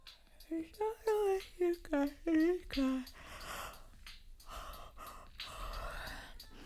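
A woman yawns up close, a string of short, wavering voiced sounds giving way to a long, breathy, drawn-out exhale, fairly quiet and with no words spoken.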